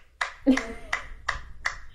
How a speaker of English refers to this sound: the clapping. It was all about the clapping.